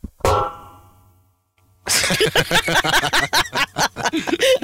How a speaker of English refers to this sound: It was like a gong, right? In the perfect time.